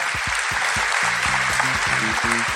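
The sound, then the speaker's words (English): An audience at the Pleasance Grand claps steadily in dense, continuous, loud applause, with a few faint voices and whoops rising briefly within it. “Give yourself a big round of applause, brilliant audience.”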